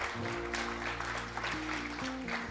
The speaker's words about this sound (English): y'all need to like give a round of applause to yourselves for a second